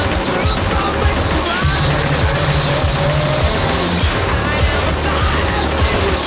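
Heavy tractor engines rumble and churn steadily, a dense mechanical drone with low throbbing tones and gritty noise, like several tractors driving past at once, with no voices.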